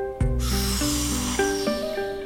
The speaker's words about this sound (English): Now let's start breathing.